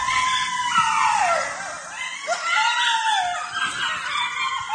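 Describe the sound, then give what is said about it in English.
A pack of coyotes howls and yips together at night under a blue moon, with high wavering cries overlapping in a continuous, frenzied chorus that stays fairly loud throughout, and no one speaking. “Wow, this coyotes last night.”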